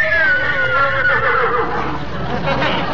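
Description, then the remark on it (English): A horse, told to speak, lets out a long, loud whinny, its shrill, wavering cry sliding gradually downward and lasting the whole moment, with no one speaking over it. “That horse can almost talk. Almost talk? He can talk. Egbert, say something. Speak to them.”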